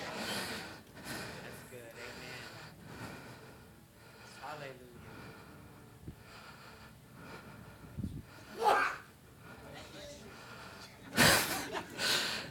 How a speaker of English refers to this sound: That was a sneeze of agreement.